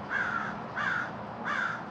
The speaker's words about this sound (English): It's a crow out here. A night crow?